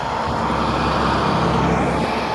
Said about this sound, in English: School bus.